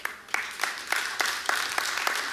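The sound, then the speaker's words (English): An audience claps steadily, with sharp rhythmic claps standing out over a dense wash of many hands. The applause is moderately loud and continuous, with no voices. “But I need you guys to get this because you're clapping.”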